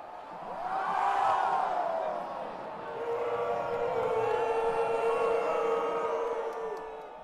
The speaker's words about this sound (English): Not to mention, the refs are being meticulous, to say the least. With each official review, of which there were many, cheering turns into jeering.